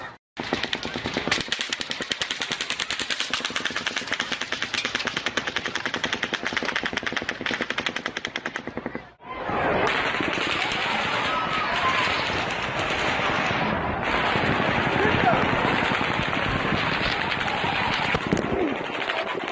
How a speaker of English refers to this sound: Once Stephen Paddock started firing on the crowd, it did take a little bit of time for people to really realize what was going on. I mean, it's a concert, it's a music festival. There's 22,000 people there.